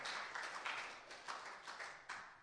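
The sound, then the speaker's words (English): An audience claps together in a dense, steady wash of applause during an Easter sermon, giving a hand clap of praise to Jesus, with slightly louder swells recurring every half second or so, fairly soft overall and with no voices. “Give Jesus a hand clap of praise today.”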